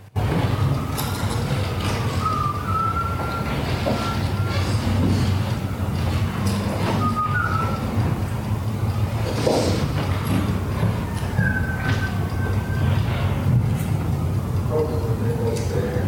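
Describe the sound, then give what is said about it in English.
Several short, clear whistled phrases rise and fall over a steady low rumble of outdoor noise, with a wailing siren sweeping faintly underneath. “Now, you do hear a siren in the background. That's not the part we're talking about here. It's the whistling right after.”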